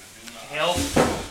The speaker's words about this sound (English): There it goes. I knocked over the sound dampener.